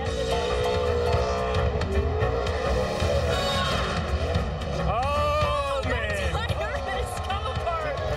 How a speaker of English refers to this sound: Whatever you do, go have fun, do a burnout, put on a show, but don't tear your car up. He tore the hell out of it.